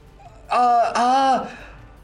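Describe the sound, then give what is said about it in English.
A person gives a loud, voiced gasp in two quick parts, a sharp drawn 'ahh' that breaks and repeats, then trails off into quiet, on looking down from the edge of a chasm at a pile of bones. No other speech. “looks down and gasps, seeing the pile of bones.”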